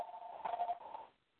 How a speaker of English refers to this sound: Somebody's phone ring. I don't know who that is.